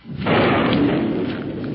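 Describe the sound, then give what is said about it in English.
A deep, rumbling roll of thunder from an approaching storm swells up suddenly and then sustains a heavy, broad low roar that slowly eases without fading out. “Storm almost here now.”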